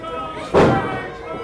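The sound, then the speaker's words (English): A single heavy thud of a wrestler's face being slammed onto the mat in a wrestling match between Ruff Crossing and Diego Corleone, a short loud burst that fades quickly, heard over a steady murmur of voices. “Goes to slam his face on the mat.”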